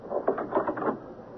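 A bedroom door swings shut with a short burst of rattling clicks and knocks from the latch and handle, over in about a second, with no voices.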